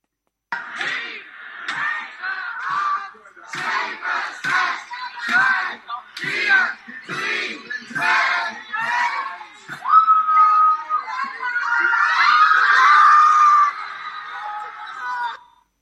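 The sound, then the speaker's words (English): A large football stadium crowd at a Spurs–Ajax match chants in steady, rhythmic bursts for several seconds, then breaks into a sustained wall of loud, high screaming and shrieking as Spurs score a goal in the last minute, holding until the end. “Screams of terror as Lucas Moura, in the last minute of the game, scores for Spurs”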